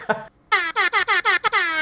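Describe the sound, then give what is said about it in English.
A loud air horn sound effect from a phone app blares in a rapid string of short, stuttering blasts after one brief opening toot, ending in a longer sustained honk, with no talking. “I was looking for my air horn app, but apparently I've deleted it.”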